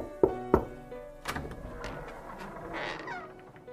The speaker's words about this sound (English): I walk to the screen door with sweaty palms. I open the door, knocking 3 times.